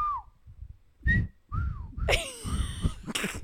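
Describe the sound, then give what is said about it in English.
A person whistles a few short, clear tones, the pitch sliding and falling, followed by louder, breathier whistling mixed with rushing air. “Listen to the clarity in my whistle.”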